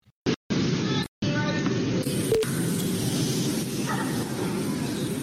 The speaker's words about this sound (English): Bit of a disturbance there in the crowd. So she's strategically waiting. I think she's going to be out of here. There she goes.